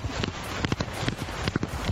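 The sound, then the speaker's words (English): A woman's voice imitates a galloping horse with quick, rhythmic clip-clop clicks in uneven bursts, fairly loud over a steady breathy hiss, lasting about two seconds. “Did you not hear the horse noise? She sounded like a horse.”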